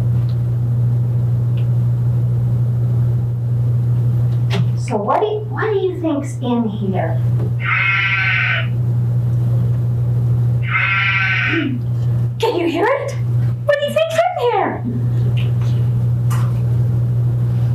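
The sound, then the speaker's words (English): A toy sheep hidden inside an object gives two short, high, wavering bleats a few seconds apart, used to introduce a lesson about the lost sheep, set between bits of a woman's speech over a steady low engine-like hum. “Oh, what is it? It's a sheep.”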